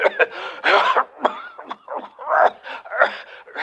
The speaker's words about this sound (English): That's the bad cough he's got.